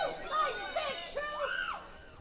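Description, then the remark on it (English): Cougar (Cougs) baseball fans cheering in a stadium during a game against Portland, with the bases loaded and two outs: a steady wash of overlapping voices with rising and falling shouts and whoops, fairly loud and continuous for a couple of seconds. “You can hear the Cougar fans out there cheering.”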